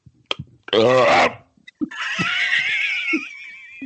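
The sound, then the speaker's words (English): A single loud, throaty burp lasting about half a second, followed by a longer high-pitched, wavering vocal sound like a squeal or laugh. “I gotta let a fucking burp and a half go.”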